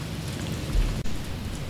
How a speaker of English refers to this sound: Oh my god, it's getting so fucking loud with the rain. Should we pause? Yeah. And then go in to my car. Yes, yes, we should. Okay. ASMR rain sounds. Do you hear that? It's rain.